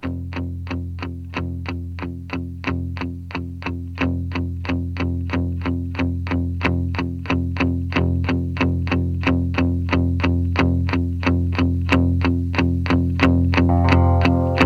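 A rock song plays on radio station 93.7 CKVS with a driving, steady beat of distorted, chorus-washed guitar chords, loud and sustained throughout, with no voices heard over the instrumental passage.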